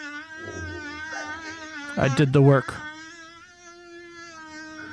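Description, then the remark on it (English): A long, buzzing stereo fart drones steadily for several seconds, wavering like a bee or fly circling around the head, while a man briefly speaks over it midway. “This fart is... it's not a mono fart. This is a stereo fart.”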